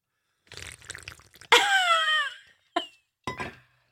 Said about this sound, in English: That sounded like an actual sound bit. It was actually me slurping on water. That was totally real.